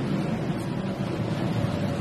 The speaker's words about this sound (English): Visiting Bratislava a week before the election, I joined a pleasure cruise on the River Danube